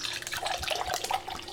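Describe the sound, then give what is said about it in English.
Sherry pours into a glass all the way to the top in a steady, gurgling stream with small splashy bursts. It continues for about a second and a half with no one speaking. “So I've got to make a new one real quick, so give me just a moment.”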